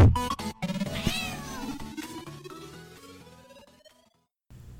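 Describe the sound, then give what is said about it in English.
A cat being given a bath meows loudly in a string of long, drawn-out yowls that rise and waver, gradually trailing off into a brief silence before a faint sound resumes at the end. “Tabby Tom's cat bath.”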